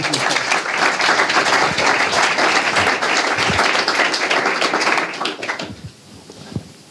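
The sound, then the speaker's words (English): A small group claps steadily for about five seconds, a dense patter of hand claps that thins out into a few scattered final claps before fading. “I guess that deserves a little bit of a clap.”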